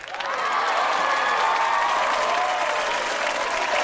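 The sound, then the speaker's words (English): Loud, sustained audience applause welcoming a comedian onto the program, with steady dense clapping that swells in the first half second and holds for the rest, a few cheers faintly mixed in. “Your fans the are applause in is overwhelming.”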